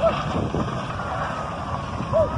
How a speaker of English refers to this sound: Here's a witness recording of a tanker going up in flames. This is what we found for audio to share with you on this one in a Missouri highway recently. Here's what it sounded like.